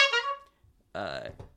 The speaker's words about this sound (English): Can we give your mama two horn honk? Yeah. And actually, let me give her two horn honk, too.